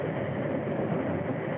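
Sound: train running on rails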